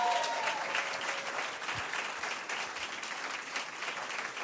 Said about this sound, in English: Let's give them a round of applause, first of all.